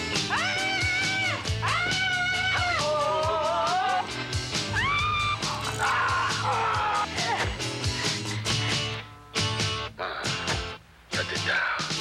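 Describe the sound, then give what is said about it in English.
A run of loud, sustained horror-film screams from several voices, overlapping in long piercing wails over a dense, rumbling backdrop, breaking into shorter choppy bursts near the end. “You know, when you get scared and there's nowhere left to turn, I think you scream probably to release that horrible energy that's in you that can't stay in you any longer, so it just goes out.”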